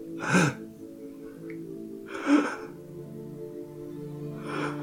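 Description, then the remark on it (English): Soft, ragged breathing: three uneven, airy breaths a couple of seconds apart, over a low, sustained musical drone. “Instead, all you hear is a soft, ragged breathing.”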